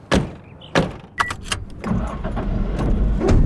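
A few sharp thuds of car doors shutting, a brief jingle of keys, then an engine turns over and settles into a steady low rumble that grows slightly louder. No one speaks.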